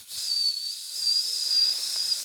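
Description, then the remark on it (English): A voice imitates a boiling tea kettle, holding a steady, high-pitched whistle over a breathy hiss for about two seconds, fairly loud, with no other sounds. “Tea's boiling. This is a terrible noise. Yeah, I'm steaming mad.”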